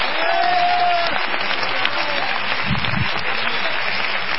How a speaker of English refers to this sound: Clap your hands and help me preach now.